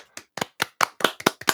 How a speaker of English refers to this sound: I'll tell you what, no, even better, we'll just cut out you and me clapping,